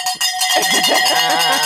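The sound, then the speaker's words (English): A bright metallic bell rings out with sustained, shimmering overtones, clanging repeatedly in a quick, uneven rhythm and staying loud throughout, with no voices alongside it. “Jackie, where's your bell?”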